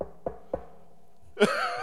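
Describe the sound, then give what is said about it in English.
Three sharp, evenly spaced knocks on a door, low and thudding, followed by a brighter, sustained rush of noise that continues to the end. “And she knocked on the door.”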